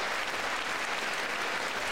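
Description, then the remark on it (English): A crowd claps steadily, a dense, even wash of applause that holds at a constant loud level throughout with no voices standing out. “Can you guys stop clapping every 10 seconds?”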